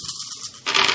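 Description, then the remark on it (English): Dice rattle and clatter onto a hard tabletop, a steady bright rattling that swells into a louder burst of clicks near the end, with no voices. “So, I need to borrow someone's dice.”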